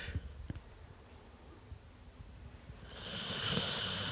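A dog named Ted snores softly: a few faint low snuffles, then a long, breathy hiss of an exhale that swells over the last second, with no talking.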